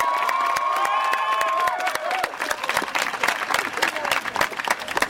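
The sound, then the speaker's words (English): A crowd applauding itself bursts into sustained applause, dense irregular clapping mixed with shouts and whoops, with a high sustained cheer early on before the clapping carries on steadily. “Give yourselves a round of applause one more time.”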